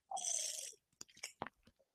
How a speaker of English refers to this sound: I'm going to take a sip of water before I answer that.